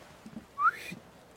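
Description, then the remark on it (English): A single short, sharp whistle signal with a quick upward pitch slide, clear against a quiet background, with no talking. “At the whistle, the mute immediately makes a straight beeline for the ship in a straight line, like irrespective of tables or people or the ocean, and just goes straight to the ship with all of the gear.”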